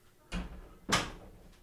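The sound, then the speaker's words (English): Two heavy door slams in quick succession, the second louder and sharper, each a hard thud with a short rattling decay, with no one talking. “chill out with the doors. Yeah, you don't need to be slamming doors.”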